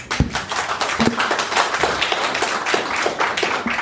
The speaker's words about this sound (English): And yes, let's clap.